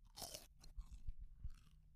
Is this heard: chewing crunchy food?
yes